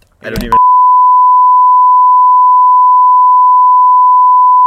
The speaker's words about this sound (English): That's just a long beep.